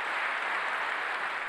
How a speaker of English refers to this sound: Wow, that's quite the rousing applause. What if Obama said that? You hear him clapping? Yes, I do.